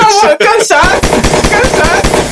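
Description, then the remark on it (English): A voice shouts, then breaks into a rapid, steady burst of gunfire-like bangs, loud, sounding like someone vocally imitating machine-gun fire for about a second and a half. “Gunshots!”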